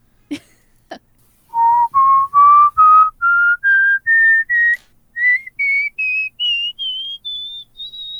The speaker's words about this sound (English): Yeah, he would whistle. No, I whistle at, I think it was at the dog.